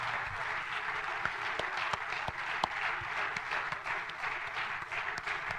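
An audience applauds a family. The applause fills the whole stretch, many hands clapping in a dense, even patter with a few sharper individual claps standing out, holding at a constant moderate loudness without any talking.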